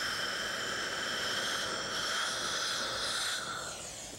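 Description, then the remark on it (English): A dental water rinse sprays into a mouth in a steady, loud hiss with a thin whine running through it. It lasts about four seconds and fades slightly at the end, with no talking. “Sleeping medicine doesn't taste very good, so we're gonna rinse your mouth out a little bit.”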